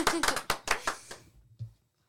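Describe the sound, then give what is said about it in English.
About six sharp hand claps in a steady, quick rhythm, loud, fading off after a second, followed by a soft low thump and then silence. “clap with me.”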